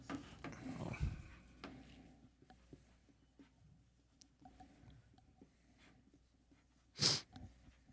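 A muffled thud of a ball dropped by a dog upstairs, followed by faint scattered knocks and shuffling as the dog plays with her toys, then a sharp burst near the end.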